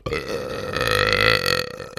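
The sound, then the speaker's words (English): A long, loud close-mic burp rumbles for about two seconds, deep and gravelly with a swelling middle before trailing off, heard on its own with no talking. “It was just ASMR burping.”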